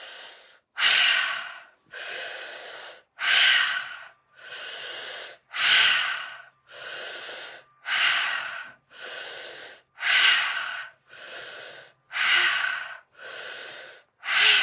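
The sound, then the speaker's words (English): Loud breathing repeats in a steady rhythm during a guided meditation, about a dozen strong airy breaths in, each lasting roughly a second with brief gaps between, and no talking. “See yourself drawing up this energy as we breathe in one.”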